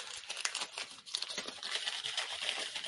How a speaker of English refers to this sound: I wish I didn't crumble up that piece of paper right away.